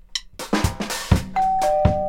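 household object, doorbell ringing

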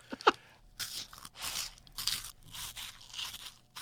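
sound effect, crunching

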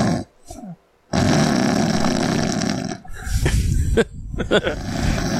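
human body sound, man snoring

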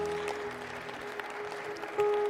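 crowd, audience clapping hands

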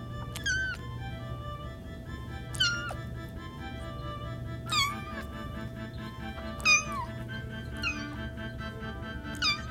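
animal, kitten meowing

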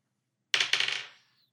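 household object, dice being rolled

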